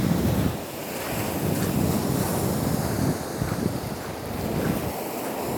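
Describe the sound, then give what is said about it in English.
Sea waves wash steadily onto the shore at low tide in a continuous broad roar with gentle surges, close by and fairly loud, with some wind buffeting the microphone and no one speaking. “Tide is out, which is glorious, which means I'm right down by the sea.”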